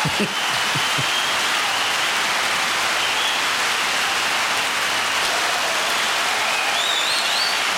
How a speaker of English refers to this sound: All right, man. On that note, we're going to go ahead and get into advice column. I'm going to applause loud.